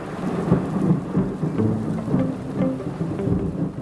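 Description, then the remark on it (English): Heavy rain pours down steadily at night over a village while deep thunder rumbles and rolls underneath, a dense, loud storm with no voices. “Soon the sky opens and the rain is fierce, and I half wonder if God's chosen this night to drown out the wickedness of the village.”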